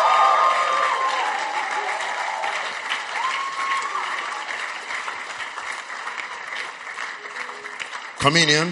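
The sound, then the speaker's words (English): A church audience claps steadily and cheers for several seconds, clapping for Jesus and for salvation, a dense wash of applause with whoops and raised voices mixed in, fading slightly before a sudden louder burst at the end. “Clap for Jesus. Make some noise for salvation.”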